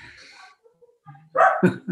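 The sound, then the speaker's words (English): After a quiet stretch with a few faint tones, a dog named Rio, responding to the doorbell, suddenly lets out two loud barks in quick succession. “The doorbells, the dog goes.”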